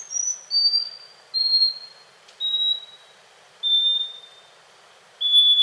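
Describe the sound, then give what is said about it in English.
A series of six pure, high whistled notes, each held steady and separated by regular pauses, with a faint hiss underneath and no other sounds, typical of a scaly-breasted wren's song. “But by analyzing song recordings, researchers found that scaly-breasted wrens can precisely measure out pauses and whistle just in time, even as the pauses increase to several seconds.”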